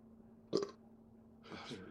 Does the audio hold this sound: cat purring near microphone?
no